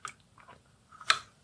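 sipping water

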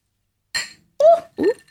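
glasses clinking

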